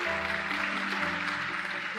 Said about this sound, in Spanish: El nombre de Jesús. El nombre de Jesús. Dale ese aplauso a Él si lo quieres dar.